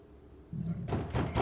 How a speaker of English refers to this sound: You hear thumping against the main door, and Thorn then runs over here.